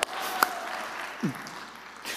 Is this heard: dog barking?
no